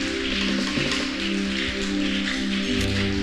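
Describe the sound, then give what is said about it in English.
A church audience claps continuously as a clap offering to celebrate God, a dense, steady wash of many hands with no pauses, over sustained low musical tones that hold throughout. “Go ahead and celebrate God with a better clap offering.”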